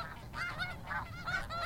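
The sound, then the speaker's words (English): Many geese honk together in a dense, overlapping chorus, calls rising and falling continuously with no pauses. No one speaks. “The birds that flock here come for the water bugs, but the engineers are coming for lithium.”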